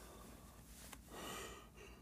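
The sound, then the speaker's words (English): A breathy yawn: a short catch of breath, then a drawn-out airy inhale and exhale lasting about half a second, quiet, with no talking. “Excuse me, geez, yawning too much. Need more oxygen in the brain.”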